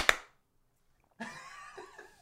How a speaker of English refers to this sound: Do you guys want to do a clap on three? Yeah, sure. One, two, three.